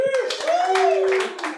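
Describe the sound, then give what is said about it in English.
An audience applauds with a dense, steady patter of clapping, and a sustained whoop rises and falls over it before the clapping tapers off; the audience at a 420-night comedy show clapping to show how many of them are high. “So how many people are high for 420 tonight? By round of applause.”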